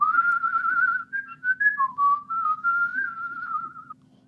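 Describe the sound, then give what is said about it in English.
A person whistles a warbly, wavering Snow White-style melody, the tone sliding and trembling between notes for about four seconds, with a faint low hum underneath and no talking. “Or doing like a Snow White whistle, which is just sort of the warbly.”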